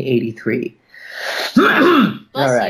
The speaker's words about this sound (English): Oh, well, no, it was a cough.